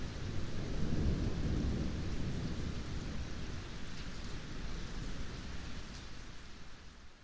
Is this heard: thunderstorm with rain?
yes